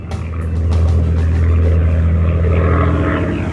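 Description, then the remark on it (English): A Spitfire's Merlin piston engine roars steadily overhead, flying from Biggin Hill and taking people on pleasure flights over the White Cliffs of Dover, a deep rumbling drone with harmonic layers that stays loud and continuous throughout, with no voices present. “That's the unmistakable roar of a Merlin engine, of a Spitfire, and that was coming from Biggin Hill”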